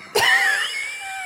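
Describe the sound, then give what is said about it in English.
A single sharp cough bursts out, followed by a thin, wheezy whistling tone that wavers and slowly fades over about a second, with no talking. “That was a practical cough.”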